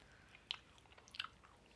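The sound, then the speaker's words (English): Wet chewing sounds with two crisp bursts of mouth noise about a second apart, quiet overall with no talking. “Either way, I just chew it.”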